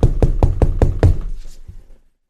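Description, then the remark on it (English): Six loud, evenly spaced knocks by the police rap on a house door in quick succession, followed by a faint trailing thump as the sound fades out. No voices. “Everybody knows that knock, right?”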